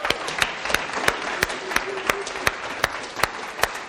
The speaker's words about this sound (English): So we got one of the greatest historians in the Fort Lauderdale Southeast Regional area here tonight. Let's give Tom a round of applause.